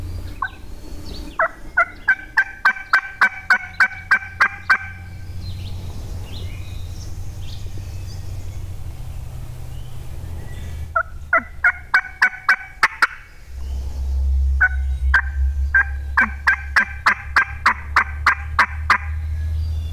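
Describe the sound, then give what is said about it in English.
A wild turkey hen yelps in repeated rhythmic series, each run of a dozen or so sharp calls fairly close, with pauses between bursts over a low rumbling background hum. “And it was probably just a few minutes later, and we heard a hen out there, and she was pretty close to us. She started yelping.”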